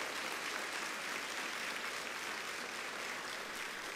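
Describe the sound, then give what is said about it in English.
A crowd applauds high school graduates steadily, many hands clapping in a dense, continuous wash of sound that holds at an even level for several seconds without any voices standing out. “Let's give high school graduates, give them a hand.”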